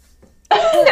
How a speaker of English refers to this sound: I sneezed.